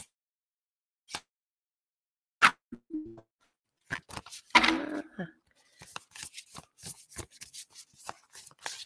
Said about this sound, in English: Okay, you have to forgive me, it's gonna be quite loud as I'm shuffling this deck, I find.